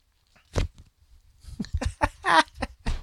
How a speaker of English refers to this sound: That's not the mic drop. That's the notebook paper drop. Flutter. That's the notebook drop, the comedy notebook drop right there.